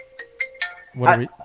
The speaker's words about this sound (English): My phone's ringing. It's my work phone again.